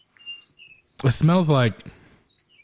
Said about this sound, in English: I love how I can hear the birds in the background